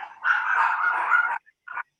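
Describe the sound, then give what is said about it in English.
A dog gives a long, drawn-out bark, followed after a brief pause by a short, sharp yelp, as someone walks in through the door of the house. No one speaks. “And another good, shut that dog up.”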